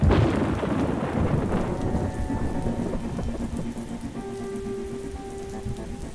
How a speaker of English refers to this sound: That day, radioactive rain fell throughout Queensland.